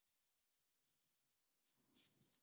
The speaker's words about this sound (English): Ooh, I can hear the cricket over here.